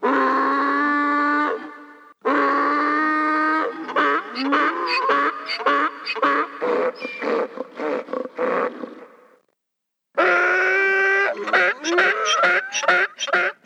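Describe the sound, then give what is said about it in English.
Loud, raspy Tusken Raider victory yells from Star Wars: a long braying wail, then a choppy run of rapid, stuttering cries, a brief silence, and another sustained harsh howl. No talking. “Moving on, Tusken Raider victory yells.”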